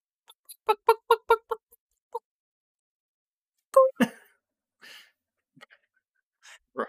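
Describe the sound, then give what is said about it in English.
A person's voice mimics a bird: a quick run of about seven clucking chirps, then after a pause a louder, harsh squawk, followed by a few faint breathy sounds. “let me hear your best bird impression.”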